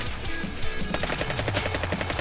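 Rapid gunfire: a steady, fast string of sharp, loud cracks firing in quick succession for about two seconds, with no voices.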